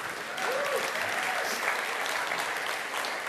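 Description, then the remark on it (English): An audience at the Reality Ventura campus claps steadily, a dense wash of many hands that swells in after a moment and holds at an even, fairly loud level, with a faint voice or whistle briefly rising over it. “Yeah, we can clap.”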